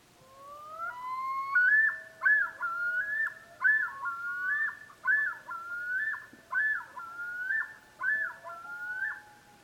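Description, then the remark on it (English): Several common loons call together in a chorus on a summer night, long rising wails overlapping with the repeated yodeling phrases of males that pulse in a steady rhythm, loud and clear with no talking. “Each male has a unique yodel, like a signature or fingerprint. Okay, here's the chorus.”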